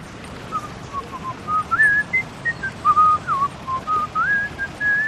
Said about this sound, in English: Finally, W is for whistling. Something you don't hear so much anymore when people have someone else's music on headphones.